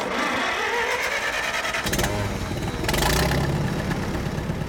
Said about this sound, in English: He's purposefully flooding his fields. A makeshift pump draws fresh water from an irrigation ditch. It spurts out from a pipe onto the dry ground.